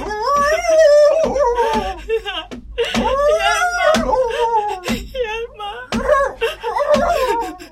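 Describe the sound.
A woman cries and whimpers, her voice wavering in sobbing, moaning bursts broken by short gasping breaths, continuing steadily throughout.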